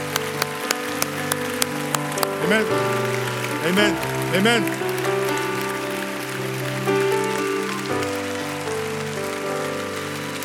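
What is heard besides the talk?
audience applauding and cheering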